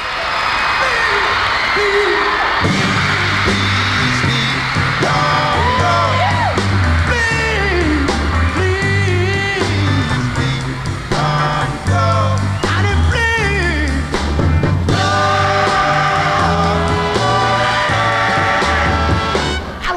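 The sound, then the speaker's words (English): A concert crowd of girls shrieks and whoops almost nonstop, high excited screams swelling over loud live music with a deep, steady bass line throughout. “And the people in the audience are going crazy. These girls are screaming.”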